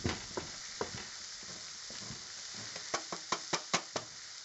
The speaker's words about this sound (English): Oh, I'm grating some cheese here. You can hear it. Grating away.